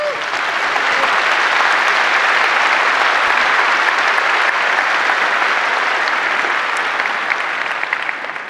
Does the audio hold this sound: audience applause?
yes